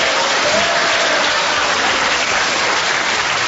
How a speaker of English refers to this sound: The next day, I rose with my manservant, Grimbling, whom I mentioned only to get a cheap round of applause.